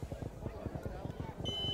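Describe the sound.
Murmured voices fill the background, then a steady, high-pitched electronic buzzer cuts in near the end and holds as a continuous tone: the end-of-quarter buzzer before the fourth quarter at a 2A football game between the Bishop Lewis Knights and the Bluffton Tigers at Lewis Field.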